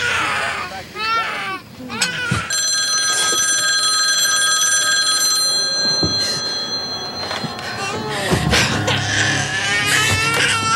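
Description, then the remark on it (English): A telephone rings steadily and loudly for several seconds after a child's wavering cries; voices and fussing continue around the ringing and after it stops. “I thought you said you didn't have a phone.”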